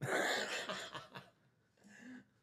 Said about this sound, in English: I know my coughing is killing us, but what are you going to do?